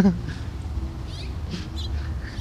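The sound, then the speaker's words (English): A few short, high chirps from a young sparrow come close together near the middle, fairly soft over a steady low rumble of background noise. “I really think these fledgling, looks like a sparrow maybe, the fledgling birds, there was a couple of them that just kind of fell out of this tree right next to where we're sitting.”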